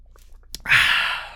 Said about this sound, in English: actually I'm going to take a drink of water.